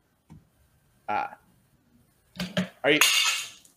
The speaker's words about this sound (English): It is in fact D&D dice. How we are going to decide who goes first in the draft order for this draft. I have here a D12 dice.